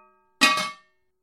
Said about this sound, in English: I will bang my pots and pans together. Someone is sure to hear that. She clangs her soup pot and her fry pan together.